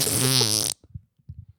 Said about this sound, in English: Every 15 seconds of fart noise.